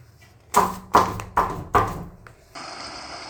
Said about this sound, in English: He knocks on the door.